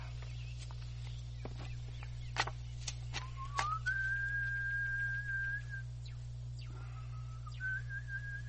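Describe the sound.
A person whistles a short signal tune like the one the Saviors whistled back and forth: a rising note held steadily, a brief pause, then a second two-step phrase. A few sharp clicks and a steady low hum sit behind it, with no talking.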